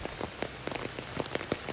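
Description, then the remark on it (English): Steady rain patters on an umbrella overhead, with a dense hiss broken by frequent sharp, irregular drop taps, as rain also falls through trees while someone walks outdoors. No voices are present. “There's something soothing, at least to me, there's something soothing about hearing the raindrops on the umbrella, hearing the rain falling through the trees.”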